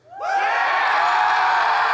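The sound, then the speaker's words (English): An audience bursts into loud, high-pitched screaming to vote for the name Beersheba, swelling within a fraction of a second and holding steady, a dense wall of many voices shrieking and cheering together. “If you want to call it Beersheba, just let us know by screaming.”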